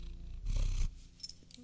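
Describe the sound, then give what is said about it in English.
A cat purrs on a person's lap, a low continuous rumble that swells louder for a moment in the middle before settling back to a softer, steady purr. “I got a kitty in my lap.”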